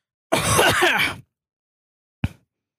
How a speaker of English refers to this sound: I clear my throat a little.